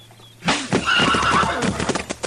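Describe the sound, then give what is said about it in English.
A horse tied at a crowded hitch rack whinnies loudly after being struck, a shrill wavering neigh lasting a couple of seconds, while hooves stamp and clatter restlessly beneath it. “You hit my horse again, I'll shoot you,”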